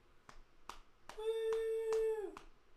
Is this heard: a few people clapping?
yes